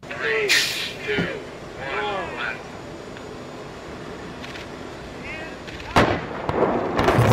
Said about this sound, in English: The building just blew up.